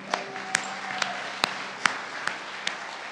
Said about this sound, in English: We should clap for that one.